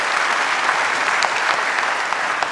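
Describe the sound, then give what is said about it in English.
A church audience claps together in steady, dense applause to receive newly saved members, a continuous wash of many hands with individual claps flickering through, sustained at an even, fairly loud level with no talking. “If you receive them, would you say amen, clap, do whatever?”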